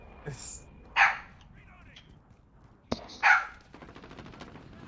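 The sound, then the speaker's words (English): A dog barks twice, each sharp bark separated by a couple of seconds, loud against a quiet background with faint clicks and rustling. “A dog?”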